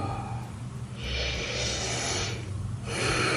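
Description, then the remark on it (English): Breathy sniffing as a woman holds a doll and sniffs its face: one long drawn-in inhale, a short pause, then a second sniff starting, all without any talking over a low background hum. “She's holding the doll, sniffing its face.”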